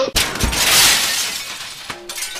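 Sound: car window glass shattering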